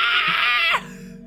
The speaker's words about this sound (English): This is when you put in that blood-curdling scream of Lois yelling Peter.